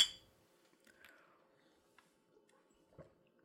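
A bright, ringing clink of glasses touching in a toast at the start, its tone fading quickly, followed by quiet handling noises and a soft thump near the end.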